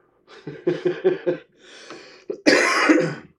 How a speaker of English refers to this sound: Except for the coughing part. Like, and the coughing? The excessive coughing part. Yeah. Perfect. It was way too hot. I did not wait long enough.